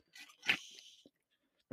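Someone drinks water from a giant plastic water bottle: a sharp crinkle of plastic, then a few soft swallowing and gulping sounds, fairly quiet, with no talking.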